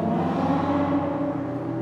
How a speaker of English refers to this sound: Humans in cars at night often sped up, like they were trying to hit cats who wandered the neighborhood at night.